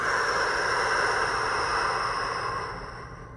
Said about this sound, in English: Two more. Breathe. Let it go. Last one. Breathe. Exhale fully.